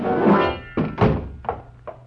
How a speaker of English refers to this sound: I backed into the room, and Baldy kicked the door shut.